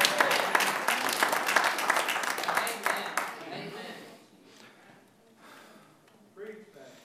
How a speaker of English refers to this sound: But if there's anything good in them, give applause to Jesus.